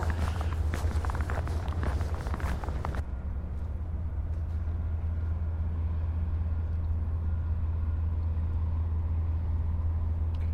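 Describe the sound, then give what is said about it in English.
A giant crane across a creek separates scrap cars from other garbage and moves the cars into a giant barge: about three seconds of loud metallic clatter and crunching, then a steady low mechanical rumble drones on. “There's a crane across the creek. It's actually separating cars from other kinds of garbage, moving the cars into a giant barge, and everything else is leaving.”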